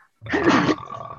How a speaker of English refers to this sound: Bless you.